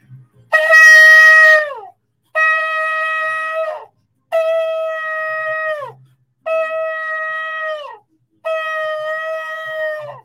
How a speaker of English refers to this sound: I love to blow the ram's horn, amen, when I begin to speak the word, amen. Bible says, blow the trumpet in Zion and sound the alarm.